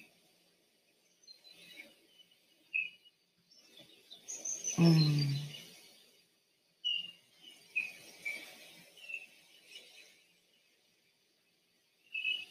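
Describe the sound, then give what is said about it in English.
Birds chirp and sing throughout, with scattered high tweets and short calls over a quiet outdoor background, interrupted around the middle by a louder whooshing, crashing sound of waves. “Hear the birds?”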